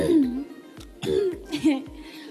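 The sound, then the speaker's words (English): Several rough, voiced throat-clearing bursts in quick succession, fairly loud, with short gaps between them and no other sounds around, as a person clears their throat early in the morning before singing. “Just clear your throat first, because it's early in the morning.”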